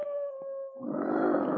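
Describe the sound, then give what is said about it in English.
A lone timber wolf howls in the distance from a wooded area, in a long, steady, mournful tone that gives way to a rougher, breathier trailing sound. There is no talking. “And then he suddenly raised his head and listened as he heard the distant wailing cry of a lone timber wolf coming from the wooded area behind the shed.”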